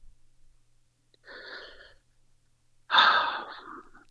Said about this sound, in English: There's that breathing thing again.